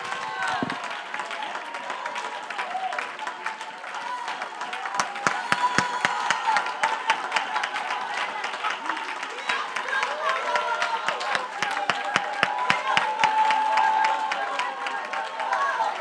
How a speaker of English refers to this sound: Come on, you ought to just clap and praise the Lord for a couple moments there.